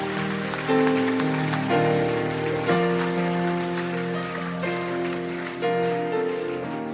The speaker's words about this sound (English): Oh, are you clapping?